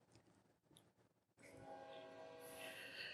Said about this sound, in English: The train is going crazy. I think the window's open too. The window's open too.